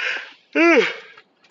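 A breathy inhale, then a loud drawn-out voiced yawn whose pitch rises and sags before trailing off into a faint breath.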